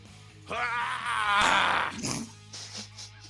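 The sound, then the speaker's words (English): A man's voice imitates a screech: one loud, strained, raspy cry lasting under two seconds with a guttural, heaving edge, followed by a few brief quieter vocal sounds. “Like the bald eagle screech, or like turkey screech, or like nails on a chalkboard. I'm the only one that screeches.”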